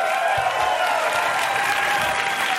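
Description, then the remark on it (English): A comedy show audience applauds comedian TJ Miller steadily, a dense, even wash of clapping that holds at full volume without fading for the whole stretch, with no voices rising above it. “Keep it going for TJ.”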